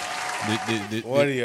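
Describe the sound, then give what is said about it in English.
A short burst of steady, crackling applause from a group, clapping for a couple's upcoming 40 years of marriage, starting on its own and then continuing underneath a voice that begins speaking partway through. “And I mean, him and my mom's will celebrate 40 years. Clap it up for that.”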